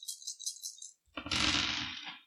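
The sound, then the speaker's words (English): Dice rattle briefly in a hand or cup, then are tossed onto a hard surface and clatter loudly as they tumble and settle, with no talking. “Remember, you only roll the dice that were not sixes.”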